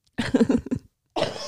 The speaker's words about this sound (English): Oh, I have a smoker's cough because I freaking chain smoked last night. That checks.